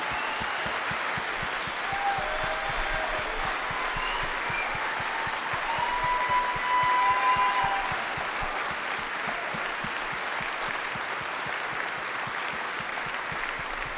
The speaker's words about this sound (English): I'd like to recognize these Army guys and gals who are visiting with us today. You guys stand. Everybody give them a round of applause for serving our country.